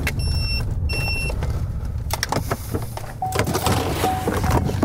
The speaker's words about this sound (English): Stay game warden, turn the truck off.